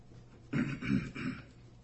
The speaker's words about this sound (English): No, I was just clearing my throat.